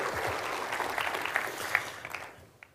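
A crowd claps steadily, a dense patter of many hands with a few sharper individual claps, gradually thinning out toward the end.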